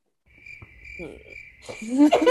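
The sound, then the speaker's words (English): Crickets chirp in a steady, high-pitched trill that fills an otherwise quiet scene, joined toward the end by louder, rougher calls that swell over the chirping. “Cricket. Literally cricket at all.”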